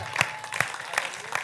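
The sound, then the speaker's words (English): A church audience claps together at the preacher's call, a dense wash of hand claps with four stronger, evenly spaced beats marking a steady rhythm, loud throughout and with no voices rising above it. “Clap your hands.”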